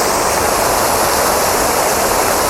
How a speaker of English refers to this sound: Right, here we go. Waterfall.